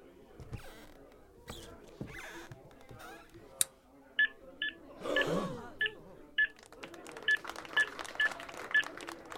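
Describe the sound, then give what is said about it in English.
A Sony electronic machine set on a piano lid emits a string of about a dozen short, high-pitched beeps in an uneven rhythm after its knob is flicked, following some rustling and knocks, with a low murmur of crowd voices in the background. “The crowd was awestruck by the machine, the beeping, faces lit as though they had seen a grand illusion.”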